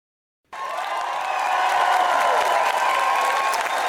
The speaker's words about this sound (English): That's the applause for our next guest. Yeah, he deserves it.